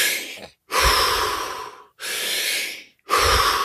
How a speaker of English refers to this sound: And then I want you to do breathing techniques. So I don't want you to just sit there or try and distract yourself. You have to do these deep breaths.